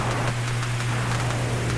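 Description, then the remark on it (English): Steady rain hisses continuously with faint pattering, mixed with a low, constant hum underneath. No voices, just the unbroken wash of falling water. “Is it raining?”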